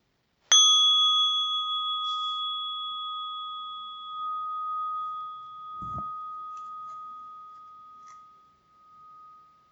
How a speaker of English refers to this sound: And then opening your eyes to the sound of the bell.